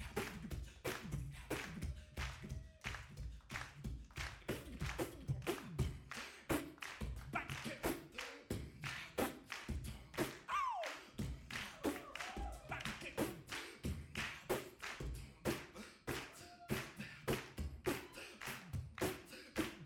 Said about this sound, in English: That clapping went on for so long. What a great audience. Oh, they're not giving up.